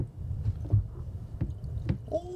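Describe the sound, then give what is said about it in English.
Tequila being poured into a glass, with a few soft glugging splashes and then a steady rising trickle toward the end, fairly quiet over a low background rumble. “Ooh, you pouring up.”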